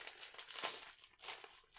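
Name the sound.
crisp packet being opened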